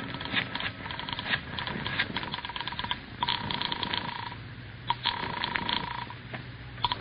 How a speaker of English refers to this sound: I rushed back into the house and grabbed the phone.